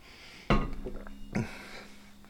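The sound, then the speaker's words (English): Someone takes a drink of water from a glass, with two distinct gulps about a second apart against a quiet background hum. No one speaks. “Take some water.”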